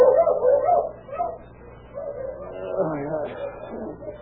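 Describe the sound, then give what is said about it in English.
Dogs bark and yelp savagely outside a little trailer house in a string of short, agitated bursts, with a brief lull before the noisy barking picks up again, moderately loud. “Suddenly, the savage barking of his dogs outside the little trailer house awakened him out of slumber.”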